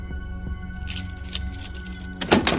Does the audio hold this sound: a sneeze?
no